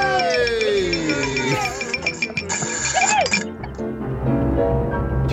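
Glasses clink together in a New Year's toast, bright ringing chimes layered over one another, with a murmur of voices in the background.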